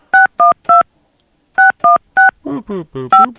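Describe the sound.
Touch-tone beeps as a phone number is dialed: three quick tones, a short pause, three more, then a voice speaking briefly with further beeps over it, close and clear.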